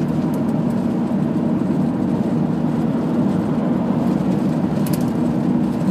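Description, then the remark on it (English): A red car overtaking on the road, heard as a steady engine and tyre rumble that stays even and loud throughout, with no voices. “Yeah, get overtaken, you dick. Yeah, fuck you, red car.”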